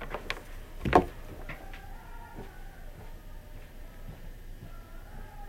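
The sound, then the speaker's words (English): The door of a soundproof room is pushed shut with one solid thud, preceded by a couple of light clicks, then the room settles into a quiet, steady hum. “Let me close the door real quick.”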